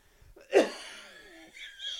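coughing and wheezing

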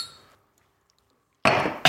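glasses clinking

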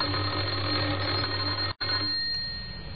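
doorbell ringing

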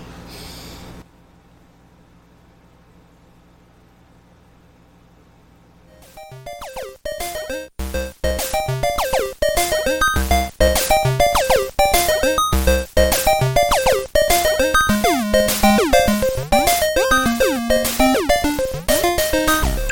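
air conditioner running

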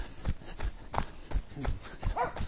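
dogs barking

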